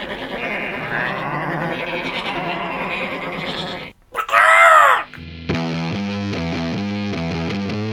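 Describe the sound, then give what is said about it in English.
A flock of sheep bleats together in a loud, overlapping chorus for several seconds in a short film entitled A Bunch of Sheep Turn Into One Chicken, then a brief pause, a sharp warbling cry, and steady music takes over. “And now a short film entitled A Bunch of Sheep Turn Into One Chicken.”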